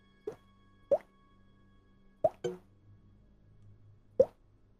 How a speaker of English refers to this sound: Water dripping on the actual floors themselves. Sounds quiet aside from that.